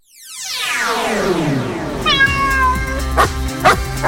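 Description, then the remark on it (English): A loud, drawn-out cat meow rings out over a bright, chiming musical jingle for the Pet Finder lost-and-found animals feature on Pure West Radio in Pembrokeshire, with a couple of sharp percussive hits near the end and no talking. “It's called Our Pet Finder. Woof woof, meow.”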